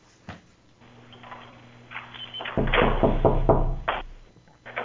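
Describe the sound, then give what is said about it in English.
A person knocks on their own door, trying to reach 1,000 knocks: a single knock, then after a pause a rapid run of several loud knocks in steady rhythm over a low background hum. “I'm just knocking on my own door.”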